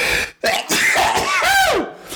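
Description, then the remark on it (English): A loud, forceful sneeze: a burst of breathy noise followed by a voiced, downward-sliding cry, with other rough, throaty vocal sounds around it. “Bless you.”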